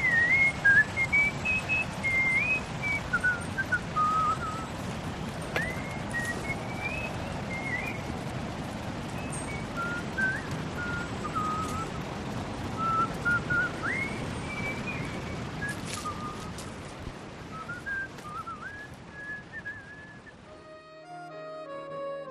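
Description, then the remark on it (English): A man whistles a wandering melody while walking his dog in a park, a thin, clear tone sliding up and down in short phrases over a steady low rumble of wind and ambient noise, with a few quiet clicks. “Finally, W is for whistling.”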